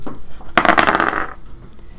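Dice clatter and tumble across a hard tabletop in a quick rattling burst lasting under a second, rolled for strength checks in a tabletop game, then settle into quiet. No one speaks.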